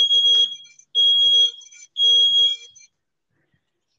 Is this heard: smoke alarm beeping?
yes